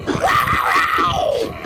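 A loud, rough big cat growl swells into a snarl, its pitch rising and then sliding back down over less than two seconds, with no talking, in a Carolina Panthers pro football promo.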